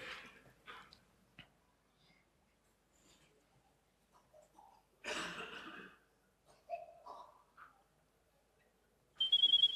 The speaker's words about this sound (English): So, and as you can see, it works. The other phone rings, as expected.